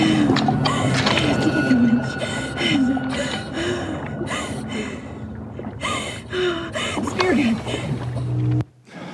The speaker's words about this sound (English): So I captured that to one, to emphasize that breathing is what you hear the whole movie